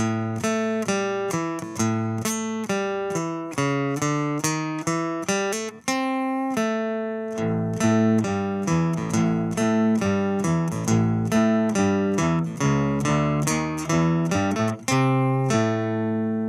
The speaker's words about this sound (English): I really like the notes down in pitch because it makes my acoustic guitar kind of sound like a bass